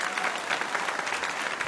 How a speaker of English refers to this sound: And, you know, could we just have a round of applause for all the other music that played today? Yeah. Just amazing for us to hear.